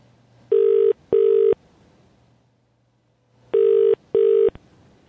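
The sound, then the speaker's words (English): Outgoing phone ringback tone of a call to a UK number: two pairs of steady buzzing rings, each pair of two short bursts, separated by a pause of silence, with a faint low hum underneath and no talking. “I don't know if I have enough credit to call the UK.”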